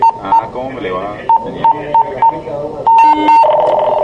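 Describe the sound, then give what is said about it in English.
A pipeline control room alarm, signalling that the system has detected a sudden drop in oil pressure, sounds as a series of short, bright electronic beeps at irregular intervals, ending in a longer steady tone, while people talk underneath. “An alarm here means the system has detected a sudden drop in oil pressure.”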